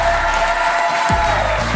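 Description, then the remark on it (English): A live audience claps and cheers at the end of a show, giving a round of applause for everyone who helps make the shows happen, a dense, steady wash of applause that stays loud for the whole moment, with no talking on top. “And then can you also give a round of applause for everyone that helps make these shows happen?”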